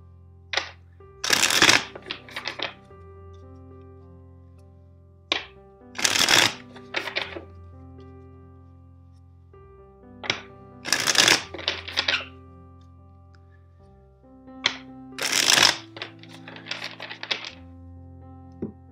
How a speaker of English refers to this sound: First, let's shuffle the deck 4 times for you.